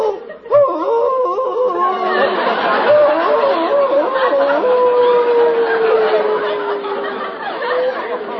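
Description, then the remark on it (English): A man on a rock calls out to Gitche Gumee with long, wavering, wolf-like howls, one drawn-out cry sliding slowly downward in pitch, loud, with a murmur of other voices and chatter underneath. “He's crazy, howling like a wolf.”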